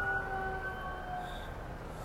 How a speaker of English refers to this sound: Here comes a fire truck.